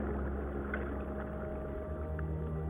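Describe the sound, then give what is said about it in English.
Whale song with low, sustained tonal moans and faint higher chirps over a steady underwater rumble, continuous and without speech. “Whatever the reason, the whales keep singing throughout their lives.”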